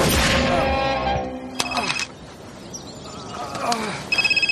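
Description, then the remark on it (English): A sharp gunshot cracks out in a film scene where Vinnie Jones's character shoots a man, over a tonal, ringing backdrop, followed by another quick bang; near the end a telephone starts ringing in rapid repeated pulses. “So he shot the guy, and now he's got a phone call.”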